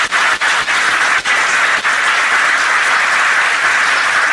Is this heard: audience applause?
yes